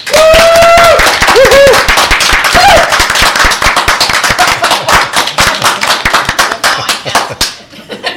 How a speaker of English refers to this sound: Okay, gentlemen, just before we continue on with this, I would like everybody to give a big hand to our one and only Patreon.